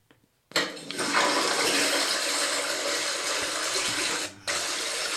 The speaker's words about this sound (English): Is that a toilet flush?